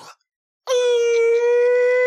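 A tornado warning siren in Goshen, heard at a Burger King drive-thru, starts abruptly after a short soft rustle, then holds a loud, steady, buzzy mid-pitched wail with strong overtones until the end.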